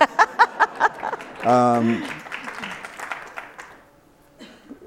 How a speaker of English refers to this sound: So now you can clap.